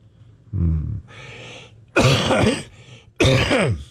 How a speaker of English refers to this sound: let me see if I can get through this without a cough.